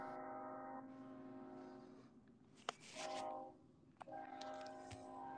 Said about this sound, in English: Sorry, I had to come inside my truck because another train come by, so.